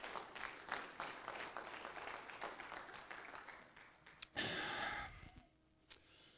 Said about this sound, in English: Go ahead and give the Lord a hand clap of praise as you're being seated.